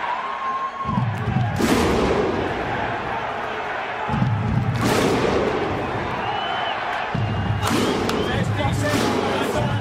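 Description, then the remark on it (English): A loud, sharp clap sound effect hits three times at roughly even intervals, each preceded by a deep booming thud, over a steady crowd-like roar. “We stand by for the clap.”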